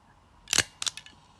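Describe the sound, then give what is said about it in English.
A stapler clicks: one loud, sharp metallic clack, then a few quicker, softer clicks trailing after it, with no voices. “Is it a stapler? It is!”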